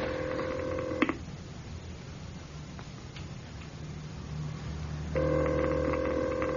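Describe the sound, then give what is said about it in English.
A telephone ring tone sounds through the line, a steady buzzing burst, then a long pause, then another burst, with faint background hiss and no one picking up. “There's no answer, sir. Should I keep on ringing?”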